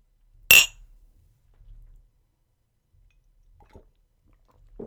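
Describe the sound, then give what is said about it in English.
A single bright, sharp clink of glasses of Tang in a toast rings out near the start, followed by quiet pauses and a few soft, wet swallowing or sipping sounds. “I drunk all mine.”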